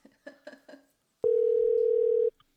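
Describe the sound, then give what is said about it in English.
A few short, soft tones are followed by a loud, steady electronic tone lasting about a second, like a phone line ringing on an outgoing call, with no voices. “he probably has my phone number saved, so it's not a trick. We're just calling Nathan.”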